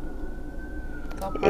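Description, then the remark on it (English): An emergency siren wails as a steady high tone that slowly sinks in pitch, faint over low background rumble, with a brief burst of voice and noise at the very end. “More sirens!”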